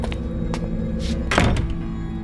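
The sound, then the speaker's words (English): A door shuts with a solid thunk partway through, over a steady low hum of background noise, with a couple of faint softer knocks beforehand. “I watched her as she walked away, down the path and out of sight before I closed the door.”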